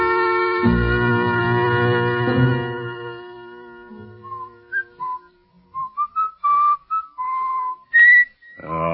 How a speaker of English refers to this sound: Would you mind stopping that eternal whistling of yours? Things are bad enough in this jail without listening to that. I'm trying to be cheerful,